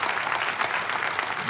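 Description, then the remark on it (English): Steady audience applause, a dense crackle of many hands clapping at an even level throughout, with no voices standing out. “So therefore, if you want to applaud for that, applaud for the truth, not me.”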